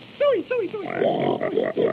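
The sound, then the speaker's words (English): A pig squeals in a few short, falling cries, then breaks into a run of rough grunts and snorts that continue steadily to the end. “Come on and bring your pig.”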